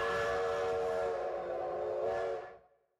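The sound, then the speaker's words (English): A loud, sustained train whistle blows steadily for over two seconds, its bright harmonic tones holding before fading out quickly at the end, with no voices. “All aboard the hype train.”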